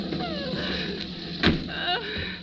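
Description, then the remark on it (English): A car door unlocks with a sharp mechanical clunk, then swings open with a softer thud a moment later, over a steady low background rumble, as a rain-soaked person is let into the car out of the rain. “I'm going to unlock the door, Dorothy.”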